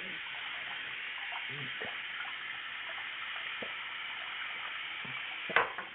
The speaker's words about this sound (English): One second, let me get some water. Have some water.